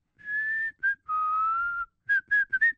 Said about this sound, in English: I was about to say, you're a horrible whistler, man. Well, I never said I was a good whistler. I barely have the ability to whistle, so kudos to me to power through that.